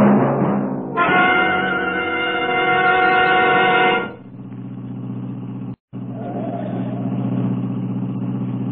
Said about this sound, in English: Who can relax in this mess of traffic? There must be a wreck or something up ahead.